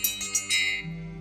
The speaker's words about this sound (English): Ring our bell.